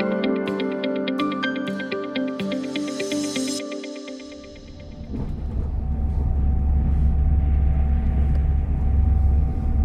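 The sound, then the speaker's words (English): A few seconds of tonal music fade out, then a steady, loud low rumble takes over, the continuous droning hum of riding inside a moving train travelling to Nottingham, with no voices. “You join me now as I'm on the train on the way to Nottingham to speak to one of last year's winners.”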